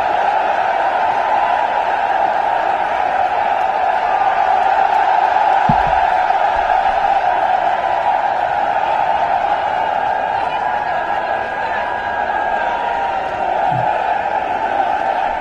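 A large crowd cheers and applauds as President Trump, clapping, walks out onto a stage, in a steady, unbroken roar that holds at the same loudness throughout, a dense wash of clapping and voices with no single speaker standing out.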